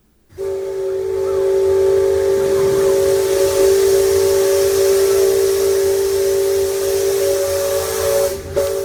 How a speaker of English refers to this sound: No, that's the horn from the steamboat that goes around Rivers of America, right?